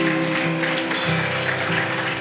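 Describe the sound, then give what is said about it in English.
Steady audience applause, dense and crackling, fills the whole stretch at a fairly loud level, with sustained low musical tones humming underneath; the applause is for a pastor. “Would you mind giving this great man of God a nice round of applause?”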